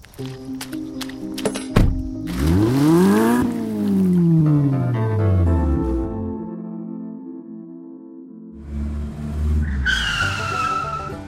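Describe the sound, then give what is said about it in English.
An old convertible car speeds by with a revving engine and tires squealing loudly, the rising and falling screech returning in a second sharp burst near the end; no one speaks. “Yeah, I still have my old convertible.”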